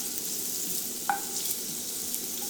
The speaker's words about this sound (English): You might be able to pick them now. They're just starting to sizzle. Yep. Just now getting it going. And the aromas are starting to come up.